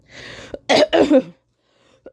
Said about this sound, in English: I'm sorry, I still got this cough. My asthma is not letting me be great.